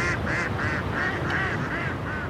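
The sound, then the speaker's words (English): Ducks quack in a quick, steady series of about eight nasal calls, fairly loud, over a constant wash of background noise like flowing water, on a river stretch with no concrete bottom north of downtown, among willow trees laden with trash. “Ducks still nest here, among willow trees laden with trash.”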